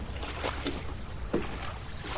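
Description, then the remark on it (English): A rowboat glides along a river, with soft splashes and dips of oars against a steady low wash of water, punctuated by faint high chirps of birds. “is this all the excitement we should expect from the river?”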